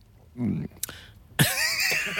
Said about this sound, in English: Tickly cough again. He's off again.